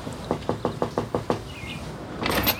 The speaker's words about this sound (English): And we then see him over at Tref Cab knocking on the door.